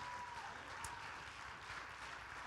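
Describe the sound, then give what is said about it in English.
Steady applause from many hands in the morning, after listeners are asked to clap their hands, fills the whole stretch, a dense, even wash of claps with no pauses and no voices rising above it. “Clap your hands this morning.”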